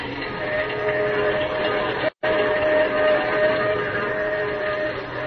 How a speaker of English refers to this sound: As the train roars into the night, he and Manfred talk softly outside the door of Lois's dressing room.